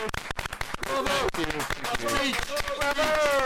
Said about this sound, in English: Okay, enough. There's applause and there's taking the piss.